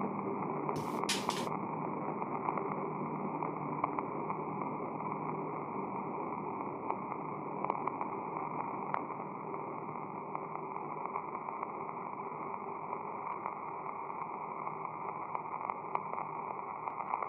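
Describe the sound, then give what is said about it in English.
A heavy rain downpour roars as a steady, dense hiss, holding even in loudness throughout, with a couple of brief sharp crackles near the start. No one speaks. “Didn't see that coming. Fucking downpour.”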